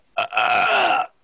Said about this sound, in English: You're not Howard Stern, so don't fucking sit there and burp, okay? It also wasn't a burp. It sounded something much worse.